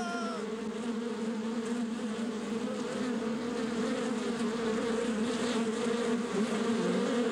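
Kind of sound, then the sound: insect, swarm of buzzing bees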